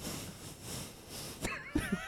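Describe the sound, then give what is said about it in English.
A voice imitates heavy nose breathing as part of an impression of Barack Obama: a long, loud, hissy exhale for over a second, followed by a few soft clicks and brief breathy sounds. “There's a lot of nose breathing.”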